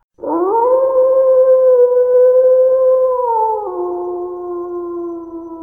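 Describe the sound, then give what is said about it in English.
Wolves howling: a loud, sustained howl swells up and holds a steady pitch, then steps down lower for its final stretch, with no talking or other sounds. “The other thing that slowed them down was when they stopped once and started to howl.”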